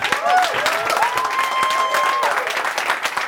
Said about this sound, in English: So, thank you so much. Please clap it up for yourselves, because you mean a lot to me.